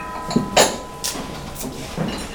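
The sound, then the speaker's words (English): A metal umpan gong is struck four or five times at a steady, fairly quick pace before a meal to call people to the dining room. Each sharp clang leaves a sustained ringing tone that carries between hits; no voices. “rings before all meals to announce that it's time not only to come to the dining room, but if you're in the dining room, it's time to, everybody stands up formally and waits for the end of the umpan before going to take their food.”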